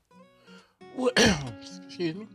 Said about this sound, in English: Excuse the coughing, that was unexpected.